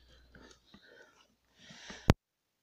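Soft, breathy whispering noises give way to one sudden, loud cough that cuts off abruptly, followed by silence.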